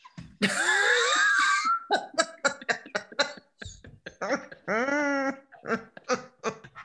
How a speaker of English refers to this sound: Hold on, I have to clear my throat, so I apologize.